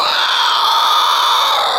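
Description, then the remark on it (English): A person voices a shrill, sustained squealing screech, imitating the cry of a chitin-shelled bug creature as fire burns it; one loud, strained, unbroken call lasting under two seconds, with no talking. “But the fire begins to burn, and she lets out a squeal and a screech.”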